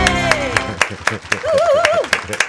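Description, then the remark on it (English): An audience applauds as actor Leon Russo is welcomed, with steady, rhythmic clapping keeping an even beat throughout, mixed with voices and a high, wavering whoop or cheer rising over the claps in the middle. “All right, they have huge applause.”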